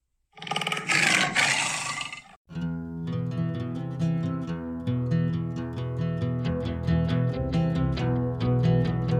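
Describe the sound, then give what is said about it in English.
A tiger lets out one loud, rough roar lasting about two seconds, forceful, then cuts off as steady instrumental music begins and continues to the end. “She was the world's most deadly man-eater, and she was a tiger.”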